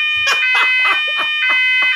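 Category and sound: signal or alarm, fire alarm going off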